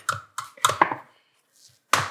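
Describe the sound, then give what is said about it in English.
Churro dough being mixed in a bowl: a handful of irregular knocks and scrapes as a utensil works through the thick mixture, with a short pause before one last solid stroke. “Okay, I'm just finishing up mixing this up.”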